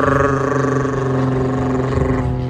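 A loud, steady drone of an airplane flying past, heard from a back garden, fills the whole stretch, a low humming roar with layered tonal hum that holds constant without a break and with no one talking.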